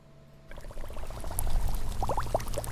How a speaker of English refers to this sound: Have you ever paid attention to the sound the water makes when the tide is coming up?